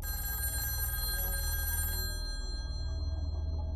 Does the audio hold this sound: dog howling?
no